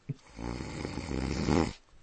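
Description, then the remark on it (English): A person imitates snoring with one drawn-out, rasping snore that swells louder toward the end before cutting off, with nothing else in the background. “for the edification of your listeners, would you imitate briefly the snoring that these folks manufactured?”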